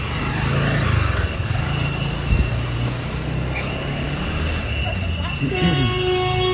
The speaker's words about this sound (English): Oh, all this traffic made me lose my... What was that honking about?